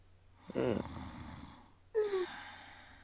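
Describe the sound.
Two loud snores from a guard resting his head on his hand at a desk: a rattling, throaty inhale followed after a short pause by a second breath ending in a whistling, nasal tone. There is no talking.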